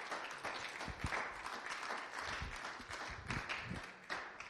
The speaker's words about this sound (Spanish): Así un poco desganados, ¿verdad? El aplauso.